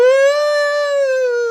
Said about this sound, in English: Entrance music then, which is a series of police sirens just going, woo!